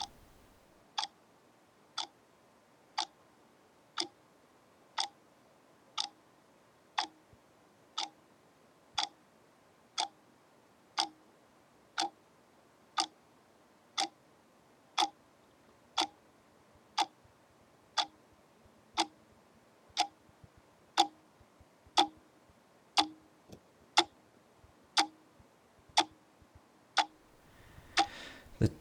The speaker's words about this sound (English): Tick-tock of the clock at the cottage is loudest